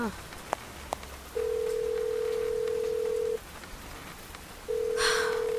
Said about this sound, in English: Come on, Charlie, answer the phone.